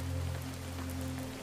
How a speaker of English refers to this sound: As you bask in the colorful light of the hurricane lamps, lost in the music of falling rain and the distant surf, You take in the storied surroundings.